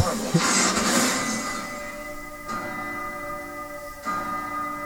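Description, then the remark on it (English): A clock hidden in the wall of a house strikes three resonant gongs at a slow, even pace, each ringing tone sustaining and overlapping the next as a bright metallic hum lingers between strikes. “Three gongs. Last time it was four.”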